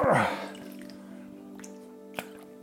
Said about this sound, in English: It's another thing I have when it comes to routine, is that every hour my watch or my phone plays a sound of pouring water to remind me to have a glass of water.